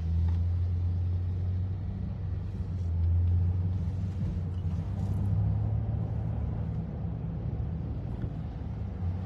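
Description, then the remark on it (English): A heavy food truck engine drones steadily, its low rumble swelling slightly as it moves past, with no voices, just a continuous deep motor hum throughout. “Do we know what food truck that was?”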